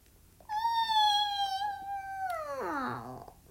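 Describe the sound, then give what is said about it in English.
A cat lets out one long, drawn-out meow, holding a steady squeaky pitch before sliding downward into a rougher, strained ending. It is fairly loud, with no talking. “It's not eeking, it's meowing. It's kind of eeking and meowing.”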